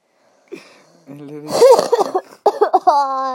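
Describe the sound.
A harsh cough from a person who has recently recovered from an illness bursts out in the middle, set among throaty voiced sounds and a strained hum, with a few short rough exhalations following.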